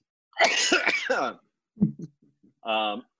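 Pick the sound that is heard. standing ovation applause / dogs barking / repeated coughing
repeated coughing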